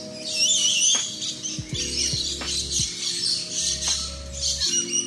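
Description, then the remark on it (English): A dense chorus of shrill, chattering calls from lories and lorikeets in the Loriloft aviary at Jurong Bird Park, many birds screeching and squawking at once, loud, with low mechanical hum and occasional clicks underneath. “You're hearing lorries and lorikeets. Here is the Loriloft at Jurong Bird Park, 2 Jurong Hill, postcode 628925.”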